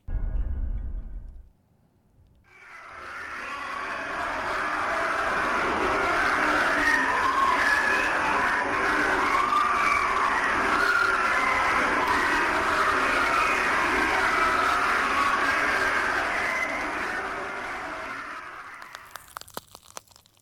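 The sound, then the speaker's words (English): Eerie, screaming-like wailing, captured by a heat-resistant microphone lowered down a deep borehole, rises out of a brief low rumble and holds as a loud, dense, harsh roar for about fifteen seconds, then fades into scattered crackles and pops as the microphone melts. “But they captured those sounds, which sounds like screaming.”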